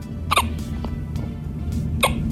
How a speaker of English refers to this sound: Even his occasional hiccups are, to me, adorable.